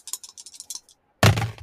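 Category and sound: household object, dice being rolled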